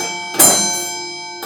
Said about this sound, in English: Me a bell ring. We got to toll the bell for falling for marriage.